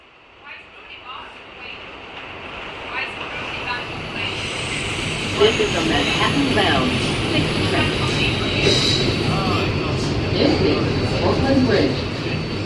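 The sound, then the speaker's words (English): A Manhattan-bound 6 subway train rumbles along loudly and steadily at Brooklyn Bridge station, its roar building over the first few seconds with metallic rattling and a high whine, while indistinct voices sound beneath the noise. “This is a Manhattan bound 6th train.”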